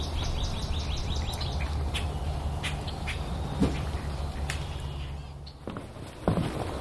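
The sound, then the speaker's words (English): Busy bird chatter from ducks, grackles and red-winged blackbirds feeding on seed: repeated sharp chirps and squeaky calls, with an occasional duck-like quack, over steady low background rumble. No one speaks. “There's ducks and grackles and red wings all taking advantage of the seed.”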